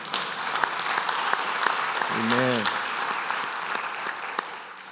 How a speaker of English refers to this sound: And that in itself is enough to give God a hand clap of praise. Amen.